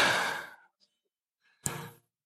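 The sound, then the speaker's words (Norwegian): A long, audible breath trails off like a sigh, followed after a short pause by another breath that starts sharply and fades. Fairly soft, with no talking. “Pust inn. Så puster du ut.”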